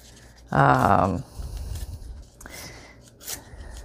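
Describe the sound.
Scrap of coffee-dyed stencil paper being ripped by hand in a couple of short, rough tearing bursts, moderately loud, after a brief voiced sound near the start.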